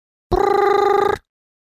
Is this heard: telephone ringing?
yes